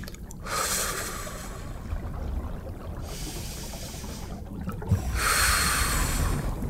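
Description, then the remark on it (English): Slow, deep breaths drawn in and pushed out, part of a set of ten deep breaths, each one a long airy rush with brief pauses between, heard alone without any talking. “So breathe with me. 10 deep breaths.”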